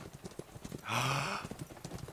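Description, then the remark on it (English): Horses carrying a small to medium-sized group of riders approach, their hooves clip-clopping in a steady, overlapping rhythm, with a short, loud whinny breaking in midway before the clopping continues. “So, you can see in the distance that there appears to be a small to medium-sized gaggle of people heading your way, mounted on horses.”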